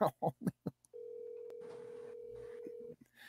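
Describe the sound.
A phone call being dialed: a quick run of four short tones, then a single steady ringing tone that holds for about two seconds, with faint murmuring voices underneath.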